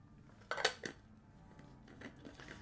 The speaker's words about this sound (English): Sorry, gang, a drink of water. That's a good move.